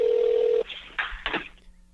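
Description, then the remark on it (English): A phone line's steady dial tone holds for a moment, then cuts to a few quick keypad dialing tones as an outgoing call to Los Angeles is placed; clear, with no talking. “Let's call out to Los Angeles and get on the phone with our friend”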